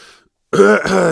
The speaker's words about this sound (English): Coughing 40 seconds in. Coughing.